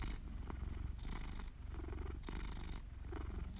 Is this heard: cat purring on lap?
yes